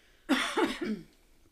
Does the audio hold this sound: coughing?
yes